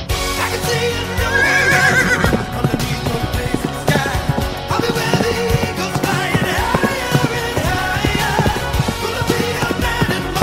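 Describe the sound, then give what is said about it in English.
A horse whinnies loudly near the start, its wavering neigh rising over a dense, steady backdrop of other sound, with sharp knocking beats scattered throughout like hooves clopping. “And he turns into a horse.”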